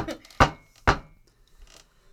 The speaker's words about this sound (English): Nomu starts knocking on the door. Lightly, he's huge. Lightly.